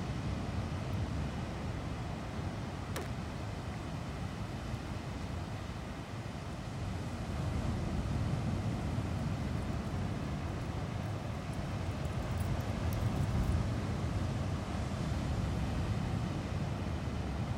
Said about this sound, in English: And now, as you listen to these sounds of the sea, imagine what it would be like if you were lying on a beach right now.